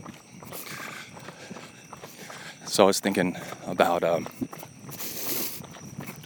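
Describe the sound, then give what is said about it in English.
Rapid, steady footfalls of someone running down a country road at dusk, a quick rhythmic patter that continues throughout while a man speaks over it, his voice louder than the steps; tree frogs are around and thunder clouds are on the horizon. “So let's run.”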